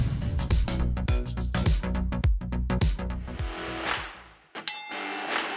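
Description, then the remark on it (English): A loud, bright bell clang rings out near the end, its metallic tone lingering, after a stretch of punchy, driving music with repeated heavy hits. “Ring the bell.”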